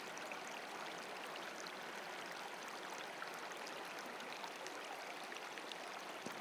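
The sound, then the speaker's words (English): Steady, continuous babbling of a flowing stream, a broad bright wash of rushing water with small splashes and trickles, constant in level, with no voices. “Continue in this manner, listening to the water and feeling yourself gathering sacred energy on the inhaling and releasing in surrender to the flow of life on the exhale.”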